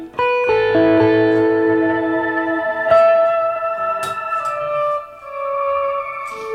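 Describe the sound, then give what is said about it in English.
An electric guitar played through an octave-up pedal effect set to mode two, which adds the octave above, sustained chords and notes ringing out with bright, doubled upper harmonics and a shimmering, effected tone, several new notes struck over about six seconds. “And then two gives you the octave above.”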